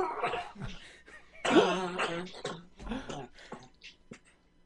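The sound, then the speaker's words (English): A rough coughing fit as a man coughs himself into passing out: a run of harsh, irregular coughs, some strained and voiced, tapering off into a few weaker hacks by the end. “He coughs himself into passing out.”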